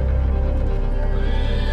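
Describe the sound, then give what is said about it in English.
A horse screams and neighs loudly, a sustained, strained whinny as it jumps from a ship's deck and lands on a stone pier at night, over a dense, rumbling low background with no voices. “From the deck of the ship erupted the scream of a horse as it jumped and landed on the pier, sparks erupting where its hooves met stone.”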